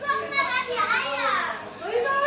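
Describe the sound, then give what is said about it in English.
A group of curious preschool children chatter and call out at once in a small room lined floor to ceiling with large wooden ostrich egg incubators on a farm in Germany, their high-pitched voices overlapping in a steady, lively babble with rising and falling squeals, the words indistinct. “A group of curious preschoolers crowd into a small room, lined from floor to ceiling with large wooden incubators.”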